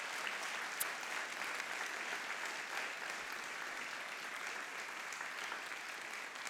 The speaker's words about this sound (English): So we're going to give them a huge, warm round of applause as they come forward.